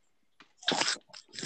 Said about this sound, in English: God, it sounds like someone's eating potato chips.